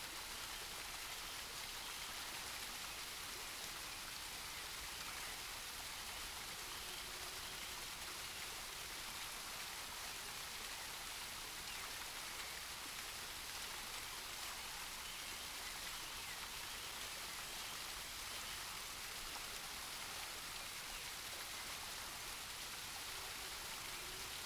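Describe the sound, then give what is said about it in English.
Steady, hissing rush of water from a waterfall in a forest at sunset that continues without a break, a dense wash of sound with no voices and no distinct events, fairly soft and even throughout. “You find a comfortable spot to sit or lie down next to the waterfall and watch the sun set.”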